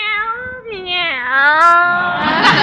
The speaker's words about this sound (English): Meow, meow. Look at Minerva. She looks like the cat that swallowed the canary.